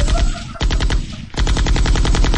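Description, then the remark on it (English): Rapid machine gun fire aimed at a leopard: a long, loud burst of tightly spaced shots with a steady rattling rhythm, broken by two brief pauses before the firing resumes. No one speaks. “I pulled out my machine gun.”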